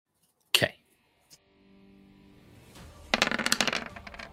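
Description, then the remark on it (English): A sharp knock, then a small tap, followed after a pause by a loud rattle of five dice being re-rolled, tumbling and clattering across a hard surface for about a second. “I'm re-rolling those 5 dice, which are for a total of 7.”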